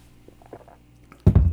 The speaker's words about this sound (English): Taking a sip of my wine real quick.